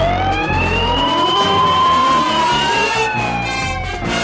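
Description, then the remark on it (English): A sheriff's car siren wails loudly and steadily, its pitch sweeping slowly up and down over the low rumble of a moving vehicle, with no voices present. “I'll let you blow the siren.”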